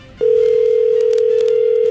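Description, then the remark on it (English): A steady, loud telephone line tone, heard on hold while a phone system tries an extension, starts abruptly after a brief moment of faint background hiss and holds unbroken to the end, with no voices. “Please hold zero. While I try that extension.”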